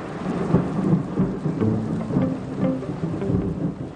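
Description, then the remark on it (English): Fierce, heavy rain pours down at night over a village in a dense, steady roar, with low rumbles of thunder rolling underneath throughout. No voices are present. “Soon the sky opens and the rain is fierce, and I half wonder if God's chosen this night to drown out the wickedness of the village.”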